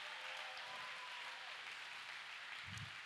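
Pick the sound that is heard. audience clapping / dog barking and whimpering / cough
audience clapping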